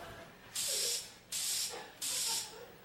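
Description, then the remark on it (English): Three loud, hissing bursts of Exciting Hold aerosol hairspray sprayed onto a person, each lasting about half a second, with short pauses between them and no talking. “Did you spray this on me?”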